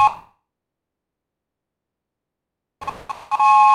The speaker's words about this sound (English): We had actually several whistles. This one's a train horn. This one's supposed to replicate the sound of a train. It's from Nido Classic.